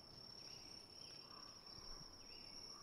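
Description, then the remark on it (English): A dense chorus of crickets chirps in a continuous, high-pitched trill that holds steady from start to finish, prominent over a soft background hum, with no one speaking. “Oh my god, those crickets are going fucking ham.”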